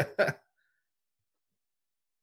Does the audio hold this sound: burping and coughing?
yes